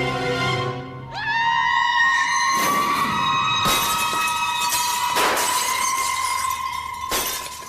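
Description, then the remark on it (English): A long, piercing high-pitched scream holds steady and breaks a bunch of windows, which shatter around it in several loud, crashing bursts of breaking glass, with tinkling debris between the smashes. “And that makes June scream, and she breaks a bunch of windows.”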